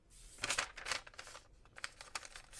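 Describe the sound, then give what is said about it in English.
Soft rustling and crinkling of notepad paper in irregular bursts, with short papery scrapes and flutters separated by brief pauses, fairly quiet and with no one speaking. “Sorry, you keep on hearing my little notepad paper.”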